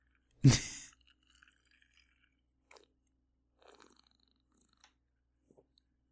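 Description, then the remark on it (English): A sharp rattle of ice in a glass of a drink just poured over ice opens, followed by near-silence broken by a few faint, scattered sips and soft clicks as the drink is sipped. “And it's going to be the worst podcasting ever because it's going to go quiet while I have a sip.”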